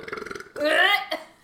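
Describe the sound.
A loud, close burp rumbles out for about half a second with a croaky, rising tone, preceded by a brief stretch of low voiced sounds and followed by a short trailing grunt.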